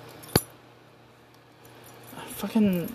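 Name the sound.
keys jangling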